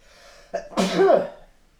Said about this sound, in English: Rude. Is that sneeze cannon? That was out of character.